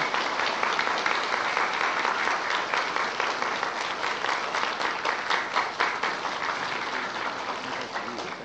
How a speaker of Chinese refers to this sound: 现在请大家以最诚心最热烈的掌声